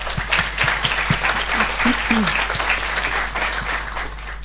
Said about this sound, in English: If we could give the speakers a round of applause, please.